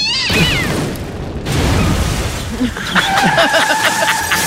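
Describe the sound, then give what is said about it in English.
A voice imitates a van engine with rumbling, sputtering mouth noises that rise and fall, ending in a steadier buzzing hum, loud and without any words. “Do a van noise. A van noise. Coming right up.”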